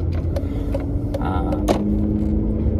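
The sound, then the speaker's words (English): A steady low engine rumble from inside a car, with a series of regular clicking ticks like a turn indicator as the car pulls out into traffic. No one speaks. “And excuse me while I get out into the traffic.”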